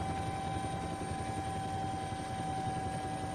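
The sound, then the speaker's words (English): A helicopter's rotor blades thump in a rapid, continuous chop over a steady engine whine as it comes down over an island in a 30-knot wind, loud for the whole stretch with no voices. “A great flock of seagulls that's just written up from the sea, obviously scared by the sound of the helicopter rotors.”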